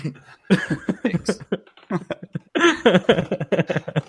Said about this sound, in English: Let me clear my throat.